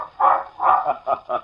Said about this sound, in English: A black and white water spaniel roaming in the brush suddenly springs out on the sand and, plumed tail aloft, rushes off the beach, barking.